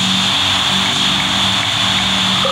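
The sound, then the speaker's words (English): A steady, loud rush of phone line static on a call that is still connected fills the whole clip, a constant hiss with a thin high whine and a low hum beneath it, and no voices. “And she just got cut off after saying she was attacked by some weird animal or something, and her phone just went all static. No, the call didn't drop. I can still hear the static.”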